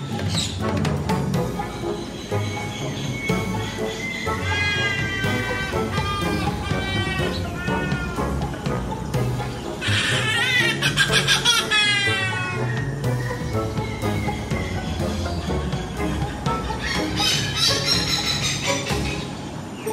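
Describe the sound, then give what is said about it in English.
A trumpeter hornbill at Jurong Bird Park gives loud, wailing, nasal calls that repeat over a dense, steady background of other birds, sounding like a plaintive cat's meow or a bleating, buzzy plastic party horn. “You've been hearing the trumpeter hornbill.”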